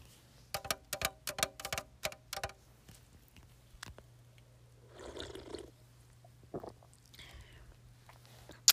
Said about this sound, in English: Okay guys, so I'm going to do some other triggers now, but let's take another sip of our sparkling water.